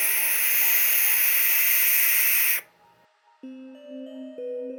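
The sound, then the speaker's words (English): A barn owl lets out one long, loud, raspy screech lasting a couple of seconds, then it cuts off abruptly and low, steady electronic tones take over. “A barn owl's cry can be quite startling, especially in these scary circumstances.”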